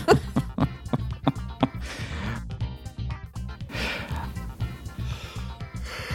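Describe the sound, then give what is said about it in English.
A drawn-out yawn right into the microphone, with breathy, airy stretches of inhale and exhale following a few sharp clicks at the start. “Just yawned right into the microphone.”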